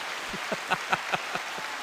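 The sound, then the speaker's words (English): A brief round of about five hand claps in a quick, fairly even rhythm, moderately loud over a steady hissing background, with no voices. “Why, she gets a clap that's for to that.”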